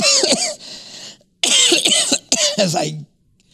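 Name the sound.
cough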